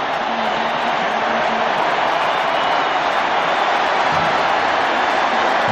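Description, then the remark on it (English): A huge stadium crowd at a football game roars after a defensive tackle, a steady, dense wall of cheering that stays loud and unbroken for several seconds, with no one speaking over it. “Again, you got to understand, these the crowd is rocking right now.”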